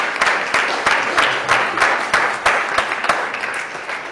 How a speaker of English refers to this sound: Give them a round of applause as they come on up here.